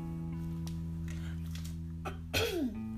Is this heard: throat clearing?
yes